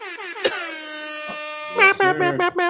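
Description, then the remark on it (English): A loud, sustained air horn blast with rich stacked harmonics, followed by a rapid series of shorter choppy horn bursts, played as a sound effect. “And it was like air horns, and it was like a spot where it goes.”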